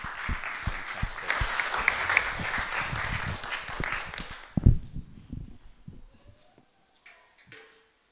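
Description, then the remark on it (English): A crowd of people applauding together to welcome a speaker as he comes to get ready to preach. A dense steady patter of many hands clapping for about four seconds before fading into scattered claps, a thump and quiet shuffling. “Can you give him a clap, please, as he comes to get ready?”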